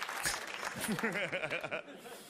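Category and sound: crowd, audience applause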